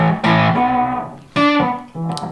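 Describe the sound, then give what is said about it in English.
Electric guitar through a Strymon Timeline delay pedal playing three distorted, sustained notes that ring and fade with echoing tails; fairly loud, with no voices. “You get a little echo from maybe one of the... Timeline, cool.”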